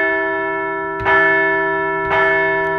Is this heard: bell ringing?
yes